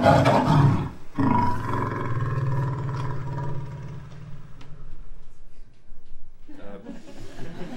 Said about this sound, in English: which was a lioness that was trying to reject the advances of a male lion. I was fortunately on the roof of a Toyota Land Cruiser at the time, but just with one microphone, not two.